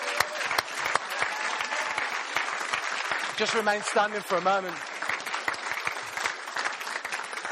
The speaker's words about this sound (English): Would you stand to your feet? Come on. Let's give them a proper round of applause.